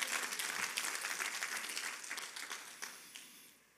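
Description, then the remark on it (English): A crowd gives a clap of praise to the Lord, a dense patter of many hands clapping at once, steady at first and then thinning and fading out over a few seconds. “If you believe that, give the Lord a clap of praise.”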